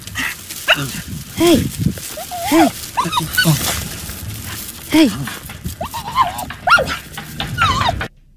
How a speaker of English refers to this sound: No, I mean, that dog is definitely whimpering at the same time I'm hearing those noises. Yes. Mm-hmm. Very, very strange.